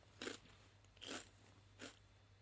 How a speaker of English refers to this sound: I can cut out the crunching. I'll stop, I'll put it away.